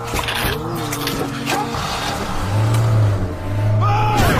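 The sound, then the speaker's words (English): A van's engine revs hard and climbs in pitch as it drives off, droning steadily with surges of acceleration, while shouting voices break in over the roar, yelling to get in the van and drive. “Get in the van! Drive!”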